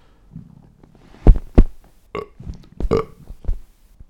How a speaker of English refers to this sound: Wait, I'm going to burp, sorry.